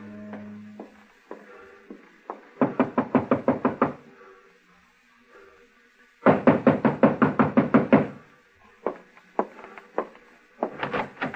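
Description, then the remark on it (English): Loud, rapid knocking on a door comes in two insistent bursts of about a dozen raps each, separated by a pause with a few scattered taps, then a final knock starts near the end. “It was Angela's time, 6 o'clock, when I heard him on the stairway outside my door.”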